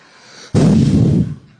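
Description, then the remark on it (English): A single hard breath blown straight into the microphone to demonstrate Jesus breathing on his gathered disciples: an abrupt, loud, rumbling whoosh that holds for under a second, then fades out, with no talking. “That's like holy breath.”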